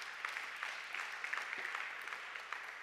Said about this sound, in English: Come on, let's give God a hand clap this morning.